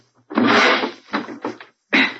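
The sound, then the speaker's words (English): The door of a smashed car being opened: a long, loud scraping rush, then a few shorter rattling bursts and a final brief burst after a pause, with no voices. “I can just get this door open.”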